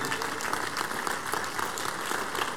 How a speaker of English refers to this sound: Stand to your feet, please. Give the Lord the biggest clap of praise, everybody.